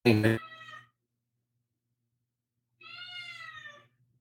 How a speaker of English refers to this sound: Crazy. We can hear the cat better than you. We can't hear you, but we can hear your cat.